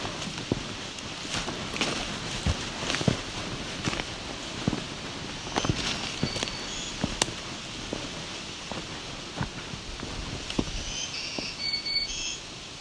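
Faint, high, thin phrases of the second song type of a black-throated green warbler come in twice, under steady crunching and ticking clicks that continue throughout. No one speaks.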